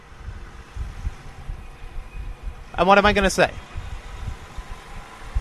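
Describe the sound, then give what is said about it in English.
A steady low rumble of heavy trucks rolling by outside fills the background, with a brief spoken phrase rising over it midway. “It's some pretty loud goddamn trucks rolling around here.”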